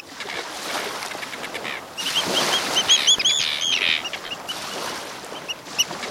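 A noisy colony of common and Arctic terns calling over one another, harsh overlapping cries rising to a busy chorus midway, with sharper high calls standing out over steady outdoor background noise.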